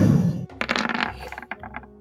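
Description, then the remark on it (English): Dice clatter across a hard tabletop, a quick burst of sharp knocks that bounce a few more times and settle within about a second, moderately loud with no voices; the dice land on a roll of 8. “I've rolled an 8 on the dice.”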